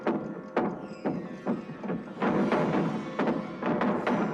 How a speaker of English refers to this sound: Shutters of the house begin to bang.